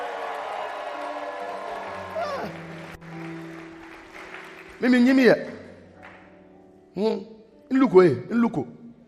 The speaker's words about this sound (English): Are there some fools for Christ here? If you are one of them, clap your hands and shout like you are a fool for Christ.